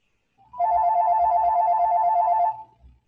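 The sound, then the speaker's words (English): A phone ringtone sounds for an incoming call from Brian Southard, a loud electronic warbling trill lasting about two seconds, on its own with no one talking. “The phone says Southard.”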